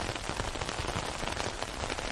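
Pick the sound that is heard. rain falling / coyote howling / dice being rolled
rain falling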